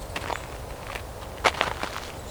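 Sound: birds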